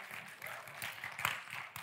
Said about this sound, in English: So we have a belated Mother's Day gift for you. Yeah, you can clap. Go ahead.